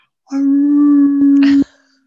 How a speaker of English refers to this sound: And I'm laying there, and this was like somewhere north of Truckee somewhere, up in there. Yeah, it was kind of remote. It wasn't a popular area and it's completely dark. And then this howling came.